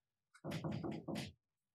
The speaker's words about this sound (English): He's currently standing outside my door, just knocking on it 4 times every time I say something directly to him. Like that.